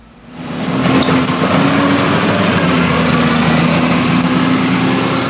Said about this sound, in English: It's another bus going past the bus stops here on Midsummer Boulevard. As you look out from the main shopping building, I can see the point across from me and Midsummer Place to my right, and the bus is past in both directions on this road